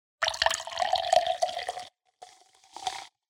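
Soda water pours into a glass to top up a drink for about two seconds, a bright splashing stream with crackling bubbles, then two brief shorter splashes follow after a pause, fairly loud.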